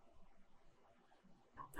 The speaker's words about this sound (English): I made a weird sound when I burp.